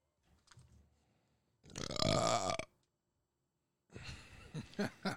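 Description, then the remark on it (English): A loud, drawn-out burp with a rough, croaky tone lasts about a second, followed after a short pause by a second, longer burp that sputters and rumbles in uneven bursts. “Nigga had 2 minutes to burp.”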